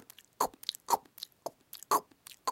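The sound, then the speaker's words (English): A voice imitates biting into a crunchy peanut butter and raspberry jelly sandwich on toasted bread: a steady series of about five sharp, gritty crunches at an even rhythm, moderately loud, with softer smacking sounds in between. “Can you make the crunchy peanut butter sound with me?”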